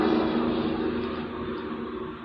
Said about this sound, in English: but I also hear the rumble of trucks.